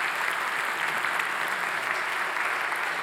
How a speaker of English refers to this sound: Over the last 5 years, we've seen 144 people get baptized. Now, I don't know about you, but I think that's worthy of applause to say thank you, God.